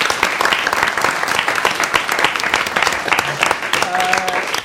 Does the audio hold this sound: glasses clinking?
no